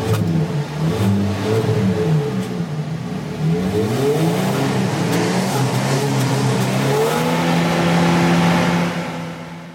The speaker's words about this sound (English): Oh, it's terrible. You like that? That tune didn't give it any justice. All you hear is induction howl.